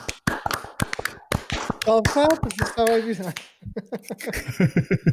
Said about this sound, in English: So, fellas, shall we just give that dude a quick round of applause, I think.